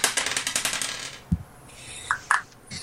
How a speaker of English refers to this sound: For sound effects purposes, I'll pretend I'm rolling initiative now.